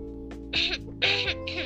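throat clearing

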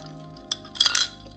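sipping a drink

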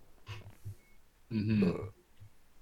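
casual burp

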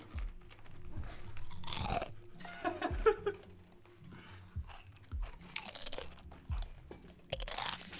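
chewing crunchy chips

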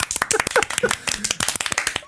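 applause

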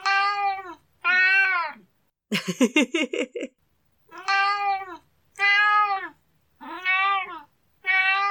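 cat meowing

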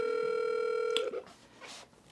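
outgoing phone call ringing

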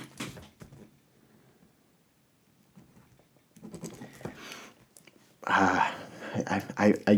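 pen writing on paper

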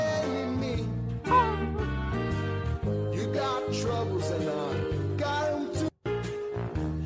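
kitten meowing

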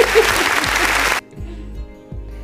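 round of applause

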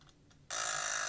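clock ticking

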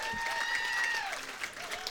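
round of applause

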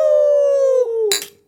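drinks clinking together

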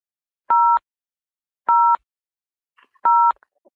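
telephone keypad button tones

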